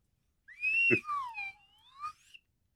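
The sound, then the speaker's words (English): A slide whistle plays a single swooping phrase, its pitch gliding down and then sweeping back up over about two seconds, fairly loud with no voices. “It's a good slide whistle.”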